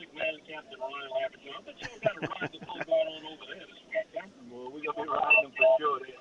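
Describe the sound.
Telephone line tones chirp intermittently over garbled, narrow-band phone-line voices, all sounding thin and filtered as if heard through a handset, at moderate loudness throughout, as a call to a participant's phone is connected with delay.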